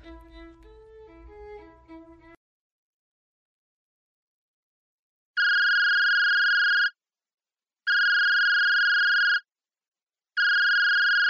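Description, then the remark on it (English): A telephone rings three times in steady, evenly spaced electronic bursts, loud, after a short stretch of music cuts off into silence. “Oh, where's my phone? Where's my phone? Hello?”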